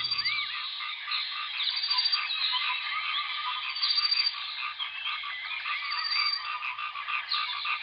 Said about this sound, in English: And let's have a little bit more listen to these tropical birds. Bye-bye.